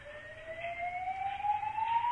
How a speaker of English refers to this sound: And that's when the fire alarm went off.